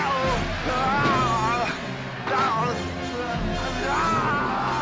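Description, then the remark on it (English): Arnold Schwarzenegger, as a slave pit fighter in a film, lets out a loud, drawn-out battle scream, his voice wavering and straining, set against a dense, constant wash of background noise that sounds like music or a crowd. “Yeah, and then then he's dragged off by a redheaded dude, who's now an adult, as a slave, to be a pit fighter, and that's where Arnold Schwarzenegger gets his first bit of dialogue, which is the Arnie scream.”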